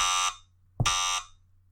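A harsh, loud wrong-answer buzzer blares twice in quick succession after a wrong answer to a trivia question about Triple Crown winners, each blast a raspy electronic honk lasting about a third of a second, with no voices.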